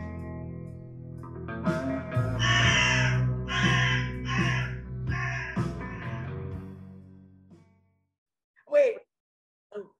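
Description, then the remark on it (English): A crow caws four times in a steady, evenly spaced series, loud, over a low droning hum, followed by a pause and a brief, sharper call near the end. “I sure would appreciate it, and so would my friend, the Crow.”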